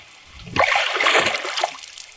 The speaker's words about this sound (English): Sir, did you hear that splash?